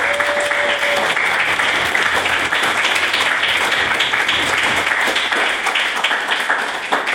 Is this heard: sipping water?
no